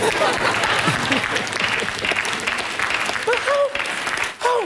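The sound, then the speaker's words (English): A church audience claps during a sermon in a dense, steady wash of applause that holds for several seconds, with a few voices calling out over it toward the end. “I'm not expecting everybody to clap.”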